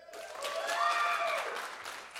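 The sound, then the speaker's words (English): An audience breaks into dense, steady applause lasting a couple of seconds, with a gliding, tonal whoop or cheer rising above the clapping partway through. “Now, if you are one of those people, if this has broken you in a way that no song has broken you in quite some time, please clap.”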